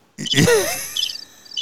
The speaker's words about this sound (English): Turn the damn crickets off.